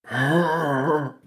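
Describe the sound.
A voice imitates the strained, labored breath of a shallow breather, a single drawn-out, voiced gasp with a groaning edge lasting about a second, fairly loud, with no talking.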